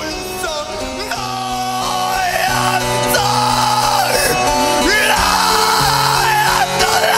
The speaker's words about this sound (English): You any idea what he's screaming about? No idea, mate.